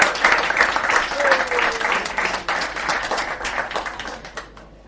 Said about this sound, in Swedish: Ge han en applåd. Han har gjort ett jävla jobb på den.